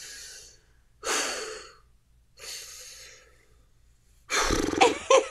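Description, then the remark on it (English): A person breathes hard and theatrically, mimicking fake crying: four loud ragged breaths in a slow rhythm, the last one shakier with a voiced, sob-like catch. “Just start breathing real hard on the phone.”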